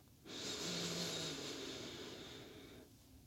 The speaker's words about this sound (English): Okay, we're going to do a 3-breath cycle together. This is going to be a long inhale and a long exhale. Breathing in with me, here we go.